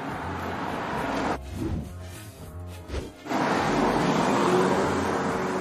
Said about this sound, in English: Hold on. Car.